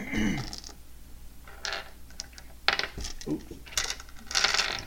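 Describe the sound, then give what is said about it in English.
Dice clatter and tumble across a hard tabletop in several quick bursts of sharp clicks and rattles, moderately loud, with short pauses between throws. “Use these dice if you want.”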